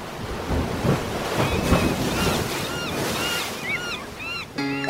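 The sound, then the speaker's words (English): Steady roar of ocean waves and gusting wind at sea, a constant, loud wash of noise, with brief high-pitched cries rising over it near the end. “The allure of the sea. It's hard not to deny it when it comes beckoning.”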